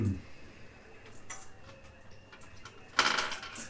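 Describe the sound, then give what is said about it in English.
Dice rattle and clatter across a tabletop as players make a willpower plus logic roll: a few faint, scattered clicks first, then a louder, brief tumbling burst near the end. “Broken by the thunder of the dice.”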